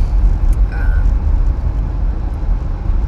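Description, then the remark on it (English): Steady low rumble of road and engine noise from inside a moving, hot car, continuous and fairly loud throughout, with a faint brief tone near the start. “Oh, it's hot as fuck in my car.”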